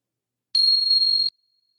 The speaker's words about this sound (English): I'm just settling in, and here comes the bell.